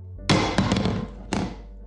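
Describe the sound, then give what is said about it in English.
A heavy metal cauldron, released by its handle beside a bed in a bedroom, crashes onto the floor: a loud clattering impact, a quick burst of rattling bangs, then one more clang, each leaving a brief ringing tail. “You release the handle and flop onto your bed at the same time the metal crashes into the floor.”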